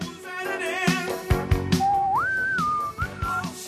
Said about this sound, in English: Whistle added